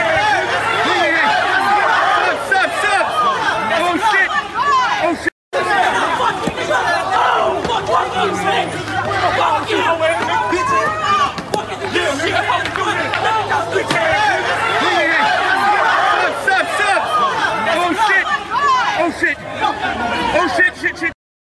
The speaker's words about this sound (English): Well, this is just muted. We don't need to hear all the yelling.